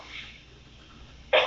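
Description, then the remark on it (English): A single sharp, loud cough bursts out near the end, following a stretch of quiet with no talking. “But, excuse me, got a cough.”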